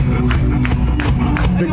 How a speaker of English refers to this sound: The whole place is clapping.